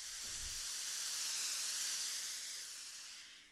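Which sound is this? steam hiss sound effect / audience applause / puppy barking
steam hiss sound effect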